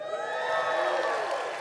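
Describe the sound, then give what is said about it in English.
A crowd cheers and shouts together, a dense, steady roar of many voices with some whoops and scattered clapping, loud and sustained for the whole moment without any single speaker standing out. “No indifference in this crowd, that's for sure.”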